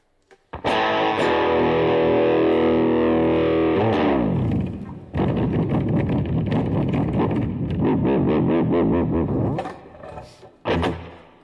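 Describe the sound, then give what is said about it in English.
A slightly out-of-tune electric guitar plays loud, drenched in distortion and reverb: a long ringing chord, then a busier run of picked notes, ending with a sharp final strum. “And this guitar's a little out of tune.”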